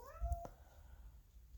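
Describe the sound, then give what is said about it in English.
A female cat in heat lets out a single drawn-out, wavering yowl that rises and then trails off, fairly quiet, followed by low background noise with no one talking. “Please ignore my cat in the background. She's in heat.”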